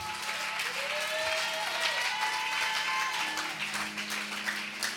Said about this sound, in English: Be on your feet. Be on your feet. Oh, if you're going to clap, clap.